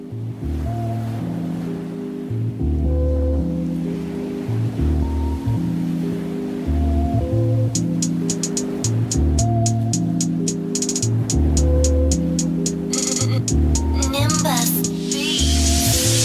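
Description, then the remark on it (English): The intro of a rap song: a mellow sample-based hip-hop beat loops a deep, steady bassline beneath washing ocean-wave ambience, with crisp ticking percussion joining midway and a brighter swell near the end. “But he definitely raps to sample-based beats a lot. But let's check this one out.”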